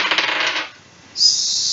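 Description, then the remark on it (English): A twenty-sided die is rolled for an attempt to grapple a dog in a game. It clatters and tumbles in a quick burst of rapid rattling hits, falls quiet for a moment, then a steady high-pitched ringing tone rises and holds. The die shows a six. No one speaks. “Go ahead and roll a d20.”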